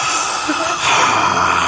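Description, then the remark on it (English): Heavy, airy breathing into a microphone, a hiss of exhaled air that swells louder partway through, with no talking. “Instead of us breathing into microphones, that would be better.”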